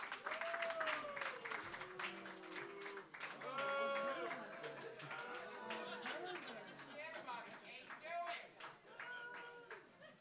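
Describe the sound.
A large audience applauds steadily and loudly for about ten seconds, with whoops and cheering voices rising over the dense clapping throughout.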